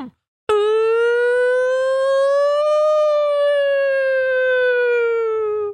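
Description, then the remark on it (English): A fire truck siren, as firefighters come out to a house after a swatting, sounds one long, loud wail that rises slowly in pitch and then sinks back, steady and unbroken for about five seconds with no talking over it. “And again, Ethan, firefighters come out to his house.”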